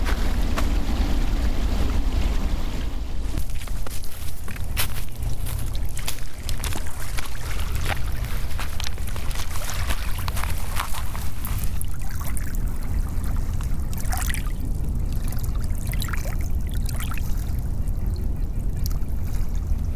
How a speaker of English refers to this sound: We pass by a lake with the lapping of the water drowning out the cars, just for a second.